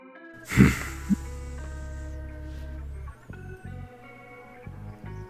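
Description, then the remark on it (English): A single loud, derisive snorting sniff from a tree creature bursts out, then gives way to a deep rumbling drone beneath soft, sustained musical tones. No one speaks. “And as you walk closer towards it, that branch moves, curves, and you can see an open eye looking down at you as you get this derisive sniff towards you”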